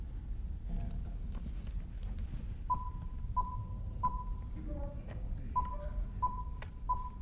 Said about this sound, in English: Okay, so here comes your next set of beeps for your next line. It'll be your beeps to let you know when to come in.